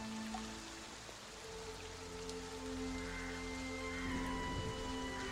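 Steady rain falls continuously, a soft, even hiss with no breaks, while low sustained tones hum quietly underneath.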